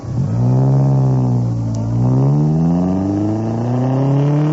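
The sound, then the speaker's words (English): A car engine drones loudly as the vehicle drives, its pitch dipping briefly before climbing steadily as it accelerates through the gears. No one speaks. “What's wrong with my driving, Roger?”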